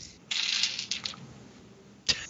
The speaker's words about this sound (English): Wow. Rolled eight dice. Sucked. Best set I rolled. Wow. On three. Whoa. You rolled a straight. I rolled a straight minus one on eight dice.